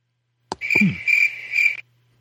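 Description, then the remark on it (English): A short cricket sound effect: a click, then a shrill, steady chirping trill that pulses three times over about a second before cutting off. No talking. “That took you a long time to get those crickets ready.”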